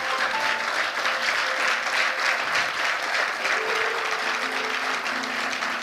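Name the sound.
audience clapping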